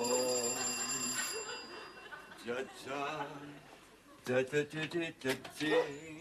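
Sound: front doorbell ringing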